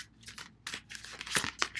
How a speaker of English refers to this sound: All right, so give a little bit more of a shuffle, and then I'm going to pull three from the top.